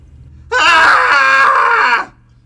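A group of people let out one loud, sustained cathartic scream together after a three count, lasting about a second and a half before breaking off abruptly into quiet.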